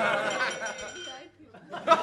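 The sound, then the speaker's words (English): A drinking glass gets kicked by someone laughing, giving a couple of bright, ringing clinks amid lively chatter and laughter from a group of people. “Somebody was like laughed with their whole body and kicked their glass.”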